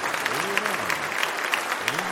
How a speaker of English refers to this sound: Do you mind if we give Jesus a clap offering? Just clap. Just clap.